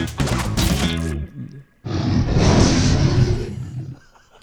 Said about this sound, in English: You want the sad trombone? I want the dragon roar. Oh, yeah.